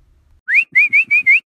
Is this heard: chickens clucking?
no